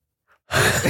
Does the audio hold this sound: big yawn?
yes